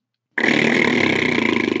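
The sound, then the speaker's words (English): A loud, buzzy raspberry blown with the lips starts abruptly after a short silence and holds steady, a rough fluttering vibration with a fast rippling pulse, no talking. “The next one is raspberries.”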